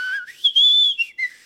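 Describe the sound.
A person whistles a short signal tune, the Hunger Games signal whistle, the pitch sliding up and then holding before dipping at the end. The tone is breathy and slightly uneven, with no talking.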